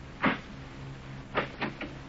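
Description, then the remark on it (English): A door is unlocked and opened: one sharp latch click, a short pause, then a quick run of three softer clicks and rattles. No one speaks. “Well, I'll tell you if you just open the door, but hurry, Pops.”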